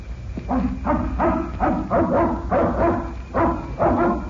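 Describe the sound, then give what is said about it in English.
A dog at Fred Harlan's place barks repeatedly in a steady rhythm, about eight loud barks over a few seconds with brief gaps between them and no voices. “That must be the dog you told us about.”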